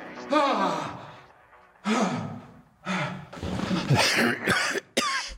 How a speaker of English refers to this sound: Cough.